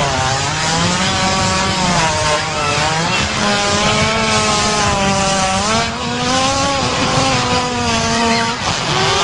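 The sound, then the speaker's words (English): A loud, drawn-out hippo fart with a harsh, motor-like buzz that rises and dips in pitch, sounding much like a revving chainsaw. It runs continuously for about nine seconds with no voices. “Specifically, I believe the other day we stumbled upon a hippo fart and we didn't even believe it was real because it made this noise.”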